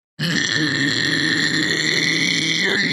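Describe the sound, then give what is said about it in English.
A single sustained guttural scream, a vocal technique demonstration, from a human voice, low, rough and wet-sounding like a toilet bowl, held loudly and steadily for nearly three seconds with dense gravelly texture and no words. “Like that wet sounds sound. Painful. Like, it sounds like a toilet bowl.”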